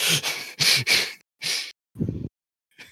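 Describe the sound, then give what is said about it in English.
A burst of four harsh coughs in quick succession, followed by a short low throaty rasp and a faint breath at the end, with no talking. “Sorry, I had to cough there for a second.”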